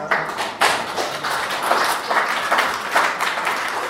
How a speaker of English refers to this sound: Yeah. She deserves applause.